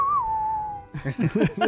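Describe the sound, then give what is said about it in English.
A person gives a single sustained whistle, a steady tone that dips slightly in pitch like a bird call, held for nearly a second before voices start talking. “What if we whistled back? I love that idea.”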